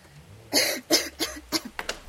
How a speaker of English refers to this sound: Well, I heard coughing.